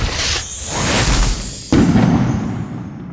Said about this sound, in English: Professor Dumbledore has to set off exploding fireworks from his wand to quiet the children.